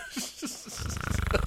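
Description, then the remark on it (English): A voice imitates a man snoring: a few short vocal grunts, then a loud, rapid rattling snort that pulses steadily for under a second. “So he's fucking fell asleep. He started snoring and I'm like poking him in the ribs.”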